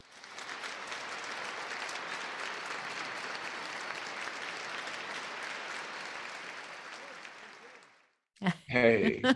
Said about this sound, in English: Now, we're all very, very curious about this. So let's give him applause and come on in.